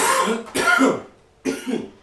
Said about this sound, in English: Excuse me, I may be doing a lot of coughing because, yeah, that blunt.